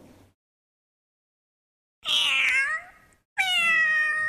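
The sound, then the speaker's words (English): A cat meows twice, fairly loud, with a short pause between two drawn-out, tonal cries; the second is sustained and steady. Otherwise quiet. “Do you think it's a cat?”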